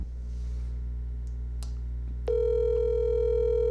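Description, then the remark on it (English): Over a low electrical hum, a few faint clicks sound before a steady, buzzy telephone tone switches on and holds loudly, like an outgoing call ringing on the line. “Is he going to answer?”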